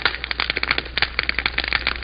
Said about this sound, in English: The crackling of the fire. That's a fire.